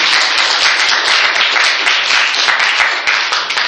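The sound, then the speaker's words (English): An audience breaks into a round of applause: dense, loud, steady clapping from many hands that carries on evenly for a few seconds, with no voices over it. “Let's give them a round of applause for them.”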